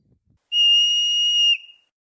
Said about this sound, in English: So it's like, but who knows what sound a groundhog makes?